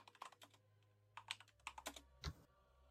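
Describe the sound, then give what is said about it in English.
Rapid, uneven clacking of keys on a computer keyboard as someone types a word letter by letter with caps lock on, with a slightly heavier thump near the end. No voices are heard. “No, still in caps, keyboard, I will shiv you.”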